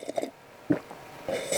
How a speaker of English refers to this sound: Sorry, I did like a double sip right there. That didn't really work too well. No, that was good. Because I'm coming to the bottom of the cup.